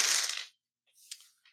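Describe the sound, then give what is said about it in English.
Seven dice rattle and tumble across a hard tabletop for a willpower roll in a game, first as a burst of clatter and then as a few lighter clicks as they settle, fairly quiet with no voices. “I'm going to roll 7 now.”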